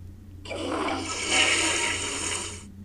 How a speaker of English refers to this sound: Because they would get flushed. Flushed right down a freaking toilet.